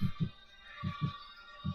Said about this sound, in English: I like that sound. Because I rolled a nat 20, it decided it was going to make a heartbeat sound.